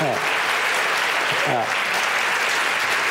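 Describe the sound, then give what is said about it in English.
A crowd applauds steadily, a dense wash of many hands clapping at an even loudness throughout, with a few brief voice-like tones surfacing underneath; the audience of a live debate on Unresolved: Shifting Power in the Middle East claps on request to relaunch the debate after a break. “it would help me to launch that if you could just clap for a minute, and then I'll do the welcome back thing.”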